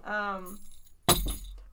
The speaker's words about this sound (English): Oh, my God. My keys. That's a sound effect right there.